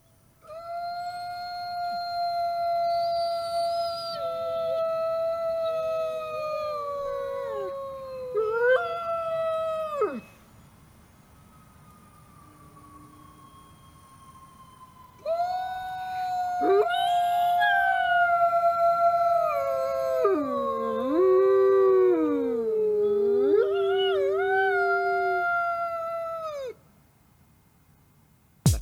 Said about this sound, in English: They are apex predators and are estimated at just 7 to 10,000 gray wolves in Alaska, about 3,500 in the Great Lakes region, and 1,600 in the Northern Rockies. The gray wolf here howling.